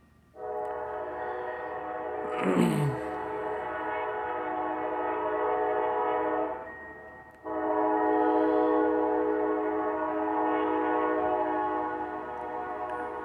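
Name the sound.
passing train with horn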